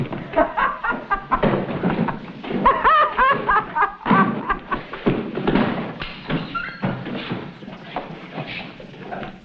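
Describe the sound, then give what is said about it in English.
Horses walk along with a steady clip-clop of hooves, set in a dense, busy mix of outdoor sound that carries on for the whole stretch without pause. “Now, come on, let's get on our horses.”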